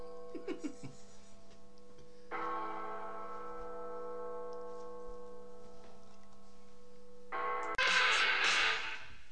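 A heavy bell tolls slowly, each deep strike ringing out with long sustained overtones, before a loud, gritty burst of distorted rock guitar crashes in near the end.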